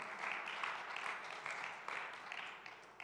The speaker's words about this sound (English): There is nothing that can stop the mission of God. Nothing. Yeah, we ought to clap for that.